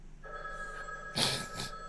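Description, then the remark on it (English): A big red old push-button telephone, not a dial phone, rings with a loud, rattling electromechanical bell in a short burst over a faint steady hum, with no talking. “And the obligatory old phone ring. You can hear it, right?”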